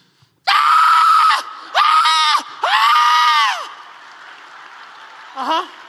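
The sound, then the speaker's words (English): A voice imitates a newborn baby screaming as it comes into the world: three loud, harsh wailing bursts in quick succession, strained, followed by a short, fainter cry at the end. “Screaming, kicking, crying at the top of your lungs.”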